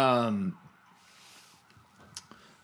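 A loud ambulance siren wails with a falling pitch for about half a second, then quickly drops away, leaving only faint traffic and room noise from outside, heard from inside an apartment.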